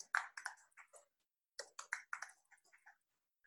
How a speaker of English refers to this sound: With the noisiest keyboard